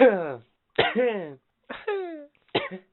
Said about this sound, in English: Well, I got to cough like that so like... you don't think it's COVID. Because if you cough too hard nowadays, people are like, back the fuck up, man.